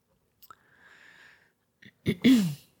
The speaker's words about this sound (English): Are you going to be sniffling and clearing your throat all night? Probably.